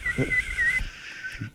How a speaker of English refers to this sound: What other sport, like, pretty much every person have missing teeth. What you can do is if you open your mouth while you're skating around, you can whistle.